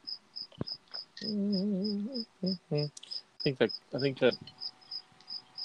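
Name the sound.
cricket chirping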